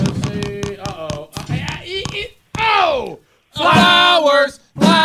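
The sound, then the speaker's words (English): A prize wheel spins with a steady run of sharp clicks that gradually slow while voices talk over it, followed by loud shouting and cheering. “I had it up there so you can hear the wheel”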